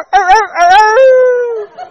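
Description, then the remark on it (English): A person imitates a rooster's crow: two quick rising syllables followed by a long, loud, held note that slowly fades, voiced and clearly human. “He can fight. He can crow.”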